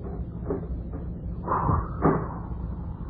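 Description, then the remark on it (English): A few dull knocks on a door in an uneven rhythm, the later ones louder, over a steady low background hum. “Shall I rap first? You want to rap?”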